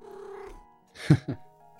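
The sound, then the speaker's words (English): A kitten lets out a drawn-out meow, then after a short pause makes two quick, louder mewing sounds in succession. No one speaks. “Oh, precious kitten.”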